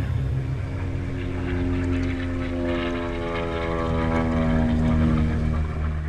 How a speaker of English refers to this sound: they sent him a piper, an airplane, to take him to Tel Aviv to sign the Declaration of Independence. And he went, and then immediately returned to Jerusalem by plane.